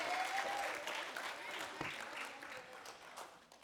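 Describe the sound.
A crowd claps in a steady, dense patter of applause that gradually fades, with a faint voice or whistle-like tone briefly rising above it near the start.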